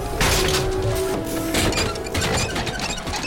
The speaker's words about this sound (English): Limits that I demonstrated by bending the machine creature's arm backward until I heard breaking metal, hissing servos, and grating cogs.